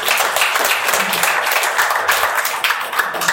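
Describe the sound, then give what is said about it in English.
An audience at a morning service claps their hands together in response to the preacher's call, a dense, steady wash of overlapping claps, loud and continuous for the whole stretch with no voices on top. “If you believe that, let me see you clap your hands this morning.”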